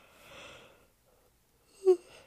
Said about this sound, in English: Excuse me, I had to yawn. It's like 6:30 in the morning.